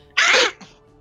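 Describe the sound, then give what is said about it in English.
A single sharp sneeze bursts out, loud and breathy, trailing off into a brief faint exhale afterward. “Bless you.”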